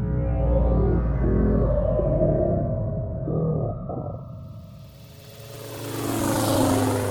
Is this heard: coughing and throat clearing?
no